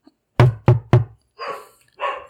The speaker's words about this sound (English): Uh-oh. That sounds like there's a dog. There's dogs! There's dogs inside!